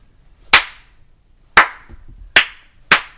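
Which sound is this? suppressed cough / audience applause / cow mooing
audience applause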